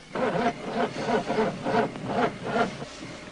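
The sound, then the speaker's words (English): An engine cranks over and over in a steady, rhythmic churn, roughly six or seven labored turns, fairly loud, without ever catching and firing up. “Won't start.”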